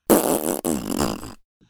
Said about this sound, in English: You should put one on now, Rick, like a fart sound effect.